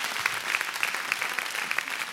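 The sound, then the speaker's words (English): A church audience applauds steadily during a sermon, many hands clapping at once in a dense, continuous patter with a few sharper claps standing out, moderately loud throughout. “Stop clapping.”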